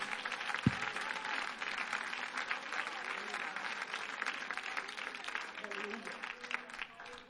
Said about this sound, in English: Clap your hands and give the Lord some praise here today.